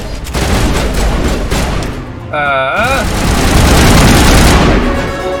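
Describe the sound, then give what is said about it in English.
Loud, rapid video game gunfire aimed at a hiding Geth rattles almost nonstop for several seconds, with a brief wavering electronic whine cutting through the shooting partway in. “What are you guys shooting at?”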